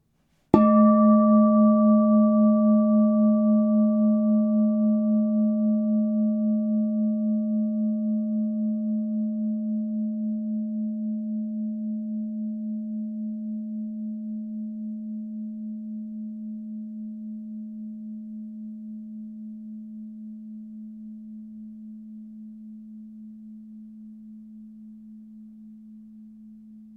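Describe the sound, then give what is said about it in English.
A meditation bowl is struck once and rings out with a steady low hum and shimmering overtones, its tone fading very slowly over nearly half a minute with no voices. “Hear the sound of the bowl now.”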